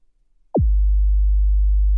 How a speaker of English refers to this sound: And remember, this is at -20. So this is a 50 hertz sine wave at -20 dBFS.